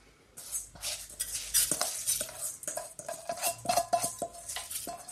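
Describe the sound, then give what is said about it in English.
Washed rice tipped into a saucepan, a steady gritty rustle and patter of grains with light metallic scraping and clinks, moderately loud and continuous for several seconds, with no voices. “So now I'm gonna pop my rice into my saucepan.”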